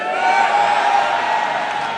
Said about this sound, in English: In Jesus' precious name, we pray. And let me hear the loudest amen.